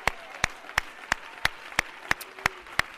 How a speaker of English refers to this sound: This is what I'd like for you folks to do, not you people sitting down. Just the one standing up. I'd like for you to give the Lord a nice round of applause and shout unto him with a voice of triumph.